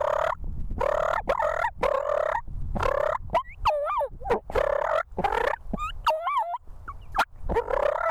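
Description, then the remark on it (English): Turkeys fighting, with rapid bursts of purring, clucks and sharp yelping calls layered over one another, loud and continuous with brief pauses between flurries. “All right, I just cut out 40 seconds of fighting purrs and clucks, and things are about to get interesting, so listen in closely.”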